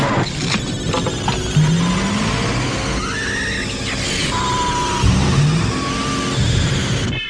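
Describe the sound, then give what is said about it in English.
A car engine from the film Christine revs loudly and continuously for several seconds, its pitch rising and falling in sweeps over a dense, roaring rumble, with no talking. “I think I enjoy this film a lot just for the car stuff.”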